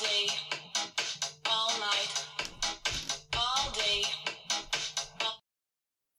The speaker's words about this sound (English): that actually was my phone rudely interrupting us.